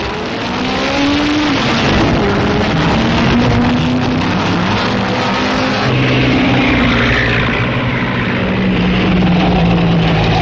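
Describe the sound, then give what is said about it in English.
Racing cars roar past in a race won by a Bugatti driven by Louis Chiron, with loud, continuous engine noise, their droning pitch sliding up and down as several vehicles pass one after another, with no voices. “For the 4th time running, a Bugatti comes in first.”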